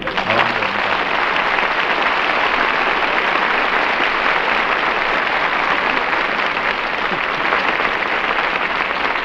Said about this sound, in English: Yes, I'm sorry we got that applause. I was going to remember some old applause I got years ago and use that tonight. But see, that just filled it.